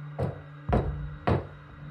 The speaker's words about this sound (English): I was barely 3 steps away from the door when I heard the knock.